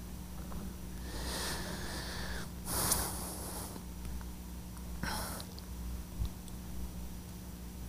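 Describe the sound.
A few breathy, contemptuous nasal snorts and sniffs, with a sharp burst near three seconds and another around five, separated by quiet breathing; no talking.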